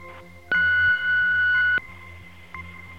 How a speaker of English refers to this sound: Leave your message and your email address after the beep.